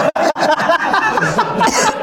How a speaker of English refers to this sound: Oh, I coughed. I'm so high. You got so much more smoke in you, bro. That was a good one, right?